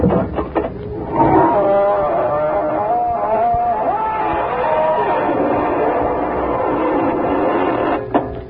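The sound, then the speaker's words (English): A long, drawn-out creak of the Inner Sanctum Mysteries squeaking door swinging open slowly, its squeal wavering and bending in pitch for several seconds, loud, with no talking over it. “This is your host to welcome you through the squeaking door.”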